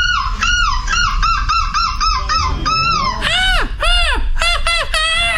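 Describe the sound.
A person mimics a crow or magpie with a loud run of harsh, rapid caws, then several longer, rising-and-falling squawks, with no talking.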